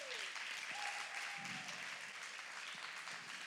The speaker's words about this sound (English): Why don't you give God a big round of applause this morning?